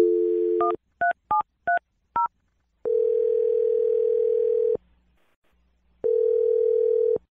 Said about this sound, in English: All right. We're going to dial the phone number right now and try and resurrect your second date, okay?